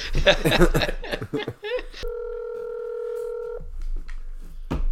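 A phone call being placed as the show's first call of the week: after some talk, a few quick dialing beeps lead into a steady, electronic ringing tone lasting over a second, then voices pick up again.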